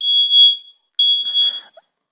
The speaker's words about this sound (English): And now the smoke alarm's unhappy once I'm done cooking.